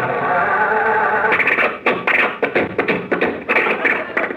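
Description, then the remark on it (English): An old car motor is started again, with a steady rough hiss at first and then a loud, irregular run of chugging pops and bangs as it sputters along. “Now, I'd like to hear how the motor sounds. Rochester, start the car again, will you?”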